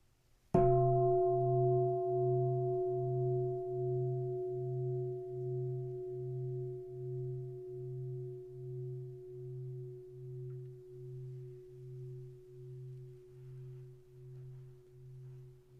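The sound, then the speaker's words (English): A single bell is struck once and left to ring, its clear tone sustaining for over fifteen seconds with a steady wavering pulse in the low hum as it slowly fades. No voices. “Can't put words to that, but it's clear as a bell.”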